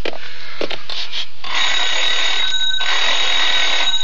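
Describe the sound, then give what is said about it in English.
An old-fashioned telephone bell rings loudly as a caller rings the operator: a few short rattling bursts, then a sustained, harsh metallic ring lasting a couple of seconds, with no voices. “May I use your phone?”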